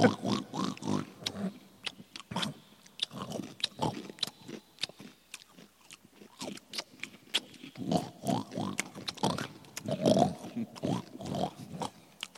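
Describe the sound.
A person makes wet, rapid lip slapping and smacking, like a pig feeding, with occasional short snorts mixed in, continuing steadily for several seconds at a moderate level with no talking.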